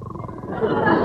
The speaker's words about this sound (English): A snore isn't a fitting reply!